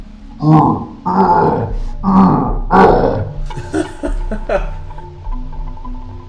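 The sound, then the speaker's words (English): Four loud, deep grunting groans come in a steady rhythm behind a closed door, each rough and throaty, followed by fainter, shorter groaning noises that trail off. “You still hear the grunting and the groaning.”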